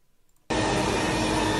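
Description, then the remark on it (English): After a brief near-silence, a racing car engine abruptly cuts in as a loud, steady, high-pitched roar that holds without pause to the end, dominant with no voices. “Just much rather hear the engine.”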